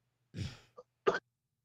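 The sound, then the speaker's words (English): A man coughs over a phone line: a rough, drawn-out cough, a tiny catch, then a second short, sharp cough, slightly muffled, with a faint low hum beneath. “Oh, he coughing, y'all. He is coughing.”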